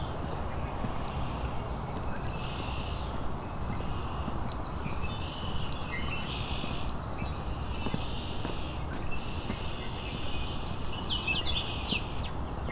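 Many yellow warblers sing bright, quick phrases every couple of seconds over a constant loud rumbling background noise. No one speaks.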